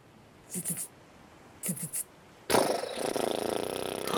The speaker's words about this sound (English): Oh! We hear it? You hear it. The motor of this boat begins to kick into gear.